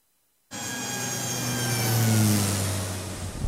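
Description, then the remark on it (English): After a brief silence, a car engine starts loudly and revs steadily in a car park attached to Heathrow Airport, its pitch rising and then dropping back over a few seconds, with no talking. “We're in a car park, and funny enough, it's attached to an airport, and that airport happens to be Heathrow.”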